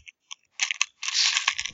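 Two six-sided dice being rolled for a world history check: a couple of light clicks, then a short clattering burst followed by a longer, steady rattle of hard pieces tumbling, fairly loud, with no voices.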